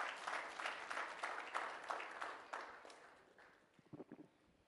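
audience clapping hands

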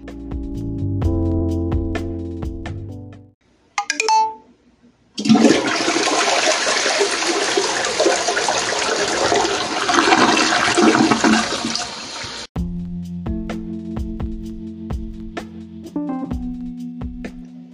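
toilet flushing

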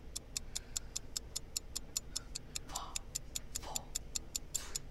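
timer ticking

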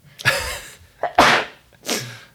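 sneeze

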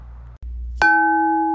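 bell ringing

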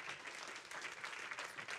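applause

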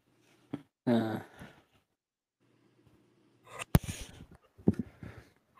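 dog noises

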